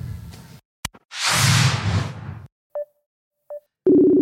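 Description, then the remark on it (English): A brief whoosh, then two short electronic beeps a moment apart, followed by a steady buzzy phone tone starting up: an outgoing phone call ringing with no answer. Clear, no talking. “So just for anyone who has come back in, we are on the phone to the PK potentially.”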